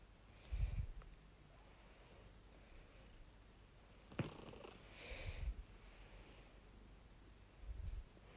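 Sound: cat purring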